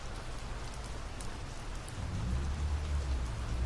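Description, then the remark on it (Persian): Heavy rain pours steadily outside an opened window, a dense hiss of drops with a low rumbling body that swells louder partway through as the sound of the rain grows stronger. No one speaks. “صدای باران در فضا شدیدتر می شود.”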